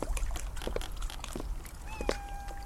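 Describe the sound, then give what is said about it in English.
Gentle water laps and ripples in soft, irregular splashes against wooden dock posts along a boardwalk, steady, with a faint thin high tone creeping in near the end. “The only sound was the ripple of the water around the dock posts.”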